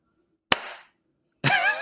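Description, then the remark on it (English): One sharp, loud hand clap snaps out of silence and rings off briefly. About a second later, a louder burst of voice-like sound begins. “You get one clap for being like, thank you.”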